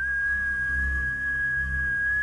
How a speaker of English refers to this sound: It's, like, whistling through the forest and kind of reverberating off all the trees. But you can kind of hear it, yeah.